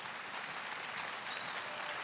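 A crowd claps steadily, a dense wash of many hands with no individual claps standing out, holding an even level throughout with no voices heard.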